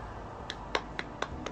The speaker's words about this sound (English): I give the more than medium speed clap to Yoda.